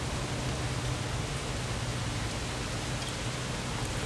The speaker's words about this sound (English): Beautiful rain.